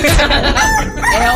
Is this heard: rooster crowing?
yes